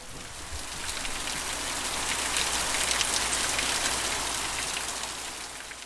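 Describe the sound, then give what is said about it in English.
Steady rain pours down in a short downpour on a tobacco farm during hurricane season, a dense hiss of drops pattering on surfaces that swells slightly in the middle and eases again, with no voices. “Even though it is hurricane season as I visit, thankfully, the rain that starts to fall soon after I arrive is just a short downpour.”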